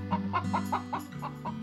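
A chicken clucks in a quick, steady series of about eight or nine short calls, moderately loud, over a low background hum. No one speaks.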